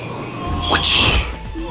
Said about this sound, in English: Do you love the whip crack noises?